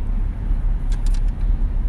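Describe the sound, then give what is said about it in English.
Busy street traffic rumbles steadily at night, a constant low roar of passing vehicles with a few faint higher clicks and squeaks flickering briefly over the drone. “But, nevertheless, man, it's really busy out here tonight.”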